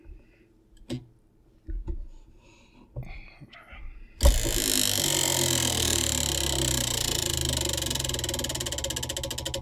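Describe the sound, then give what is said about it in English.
A few scattered clicks and handling noises, then a prize wheel spins with a loud, rapid clatter of ticking that rattles on steadily to the end, bright. “All right, spin that wheel there, my friend.”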